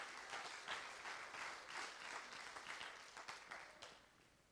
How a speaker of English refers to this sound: So somebody clap their hands to the master.